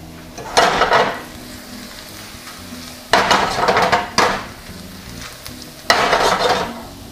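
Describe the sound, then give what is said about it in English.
Garlic browns in shimmering hot oil in a big pan, sizzling with a steady low crackle, broken by four louder bursts of stirring and scraping against the pan. No one speaks. “When that starts to shimmer, well, that's supposed to make a splashy noise, but you know what I mean.”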